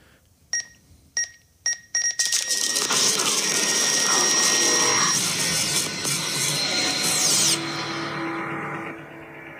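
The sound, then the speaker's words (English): A fax machine starts with four short, high electronic beeps, then breaks into a loud, continuous screeching, warbling noise with shrill whistling tones that runs to the end, with no one talking. “A fax machine going on, going haywire.”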